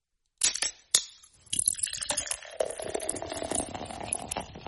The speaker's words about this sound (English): I'm going to pour myself a Monster Energy drink right now, because I need that punch of energy.